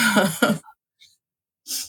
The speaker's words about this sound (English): Sorry, I had to sneeze.